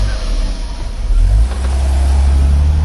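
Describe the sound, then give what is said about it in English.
A rough, out-of-tune car engine runs loudly, its low rumbling drone surging slightly partway through, with no voices. “This is what Driving with an out-of-tune engine feels like...”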